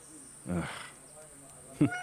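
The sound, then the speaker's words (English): A cat meows twice in Egypt, at the entrance to the lower levels of an ancient complex: a short, slightly drawn-out call followed after a pause by a brief, sharper one. Both are fairly loud over a faint steady background hum. “What on earth are you doing here, cat?”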